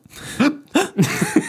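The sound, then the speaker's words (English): A voice mimics hiccups: several short, sharp vocal gulps in quick succession, fairly loud, with brief gaps between them and no other talking. “Being an I-Fi gives you hiccups.”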